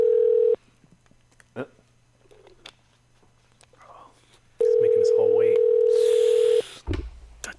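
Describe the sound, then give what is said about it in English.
An outgoing call's ringing tone sounds in two steady, loud electronic bursts, a brief one at the start and a longer one a few seconds later, with faint murmuring and clicks in the gap. “If you hear your phone ringing right now, this could be you.”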